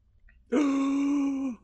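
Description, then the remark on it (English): A crowd-gasp sound effect: a single sustained, voiced gasp-like "ooh" rises sharply and holds steady for about a second before cutting off, loud with nothing else around it. “That was the internet collectively gasping.”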